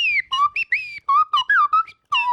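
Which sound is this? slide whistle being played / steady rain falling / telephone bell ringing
slide whistle being played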